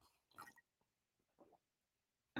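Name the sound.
sipping coffee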